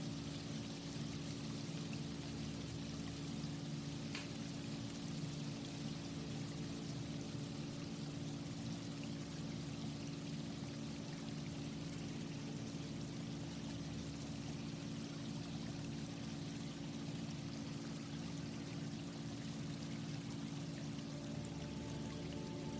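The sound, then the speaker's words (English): Water flows steadily in a stream, a continuous rushing burble at an even level for the whole stretch, with no voices. “As you continue to walk, I want you to hear that stream becoming louder as you're closer to the water.”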